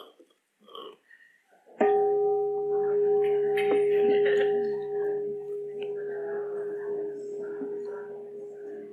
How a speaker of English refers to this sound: And I will time you. I'll ring the bell in between people.